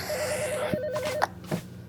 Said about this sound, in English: What the hell is that? The phone is ringing. I mean, I'm really busy with the these... The phone is ringing. For God's sake. The phone is ringing.